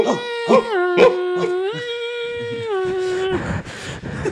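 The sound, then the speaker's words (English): A voice imitates Hungarian police dogs barking: a few sharp yelps, then a long, drawn-out howl that steps up and down in pitch, ending in a burst of breathy noise. Loud. “Hungarian police yelling after dogs.”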